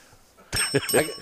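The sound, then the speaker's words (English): A bicycle bell, crushed and bent during a move, is rung a few times in quick succession, giving a slightly buzzy, dull metallic ring rather than a clean chime, after a quiet start. “Look at my bell. It got crushed. So It's going a little bit, but it's bent.”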